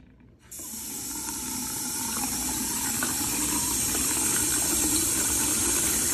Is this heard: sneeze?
no